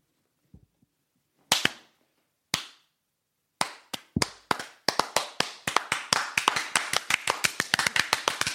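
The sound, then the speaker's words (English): An 80s-style slow clap: single sharp handclaps spaced about a second apart, gradually speeding up until they become a steady, rapid run of loud claps. No one speaks. “80s slow clap for the display of awesome psychic powers.”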